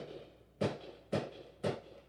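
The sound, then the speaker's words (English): Three sharp firework bangs go off in steady succession, each a quick booming crack with a short fading tail, heard over a low background hum. “Fireworks.”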